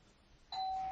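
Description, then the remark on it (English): After a half-second of quiet room tone, a doorbell suddenly rings with a loud, clear, sustained electronic chime that holds steady to the end. “Oh, Saved by the Bell.”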